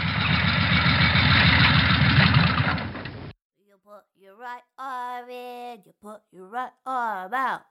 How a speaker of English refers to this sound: Oh, hang on. I hear the noise of a motorbike.